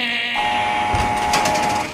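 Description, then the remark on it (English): A heavy electric steel prison gate grinds open as guards come onto the tier, with a loud, steady motorized whine and rattling metal, sustained for over a second, with no voices. “Coming onto the tear, it's a heavy steel door and it opens electrically, which means you hear.”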